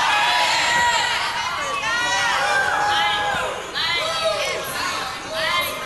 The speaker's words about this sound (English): Can you hear me over your shouts? Amen.